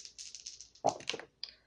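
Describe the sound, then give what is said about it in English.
A quick run of small rattling clicks, then a sharper clatter as dice tumble across a hard tabletop and settle, with one last faint tap. Fairly quiet, with no voices. “Let me roll for that.”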